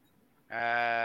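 After a moment of quiet, a single loud goat bleat starts abruptly and holds steady, a nasal, buzzing cry with no talking.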